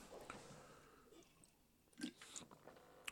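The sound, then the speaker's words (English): Quiet chewing and biting on a frozen yogurt pop, with soft wet crunches at first, then a few sharper bites after a pause and a final crisp snap, no voices. “The yogurt pop has been eaten.”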